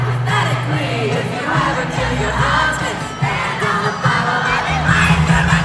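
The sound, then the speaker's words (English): A large concert crowd at a show in Milwaukee screams and yells continuously, a loud, dense wall of cheering voices with whoops rising above it, sustained throughout with no pause. “And she said her favorite moment in the set list is when the crowd gets completely unhinged on the song we've got on the Country Heat playlist right now,”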